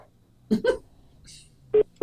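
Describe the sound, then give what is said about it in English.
Two short, steady electronic call-waiting beeps on a cell phone line, signalling someone else trying to call in, spaced about a quarter second apart, preceded by a couple of brief muffled bursts of sound over a faint line hiss. “Well, it's the risk you run when you use cell phones. Call waiting.”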